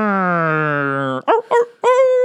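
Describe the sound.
A voice imitates a dog howling, playing Frankenstein's dog, Snoopy, for a Halloween segment: one long, steady howl, then a couple of short yelping barks and a rising howl starting again. Loud, with no other sounds.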